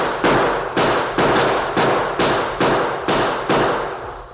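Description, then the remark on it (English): A steady volley of about eight loud rifle shots fired from a ridge at Indians, bullets crashing against rocks. Each shot is a sharp crack that quickly decays before the next, fired at a roughly even, rapid pace with no voices. “Cries of surprise came from the Indians as bullets from the rear crashed against the rocks.”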